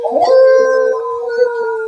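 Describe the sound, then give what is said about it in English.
A person imitates a wolf howl with a long, sustained, steady tone held for about two seconds, loud and unbroken, with no talking. “My howling is so good now.”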